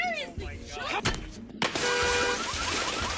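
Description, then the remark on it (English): A metal pipe strikes a cheap van's window with sharp, loud blows, bouncing off it repeatedly, then on the backswing the window of a BMW SUV behind shatters into a sustained crash of crunching, tinkling fragments, with excited voices in the background. “Alright, so for some reason, this cheap shitty van, the glass is so strong that the metal pipe bounces off it repeatedly, but on the softer backswing, the fancy BMW whatever SUV behind immediately shatters.”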